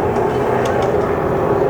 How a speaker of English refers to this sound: do I need to pause on that? That helicopter really does pick up. Wow.